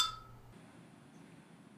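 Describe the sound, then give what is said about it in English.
Glasses clink together once in a toast, a bright ringing tap that fades within half a second, leaving only a faint, steady background hiss. No one speaks. “Cheers to that.”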